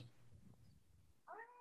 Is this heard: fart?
no